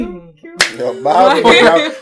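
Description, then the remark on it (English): A single sharp gavel bang cracks out after a brief murmur of voice, followed by loud overlapping voices and laughter that continue to the end. “Someone bang the gavel.”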